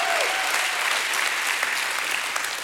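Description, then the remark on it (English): A church audience breaks into steady applause as a hand clap of praise to God, a dense wash of many hands clapping at once with a few sharper claps standing out, sustained and fairly loud throughout. “If you believe that, you ought to give God a hand clap and a shout of praise.”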